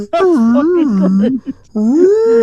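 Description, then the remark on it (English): A person imitates whale song with long, wavering, moaning vocal calls that slide up and down in pitch, forming two loud sustained phrases separated by a short pause. “I understand that we've got an idea for episode 200, but you two doing whale sounds for a fucking episode.”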